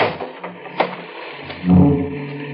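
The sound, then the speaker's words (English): A few dry mechanical clicks of a latch, then a heavier, low-pitched creaking thud as a man opens the trunk of a car stuck in a ditch during a storm, a trunk holding tools, with a soft rumble lingering afterward. “I heard him open the trunk in the back.”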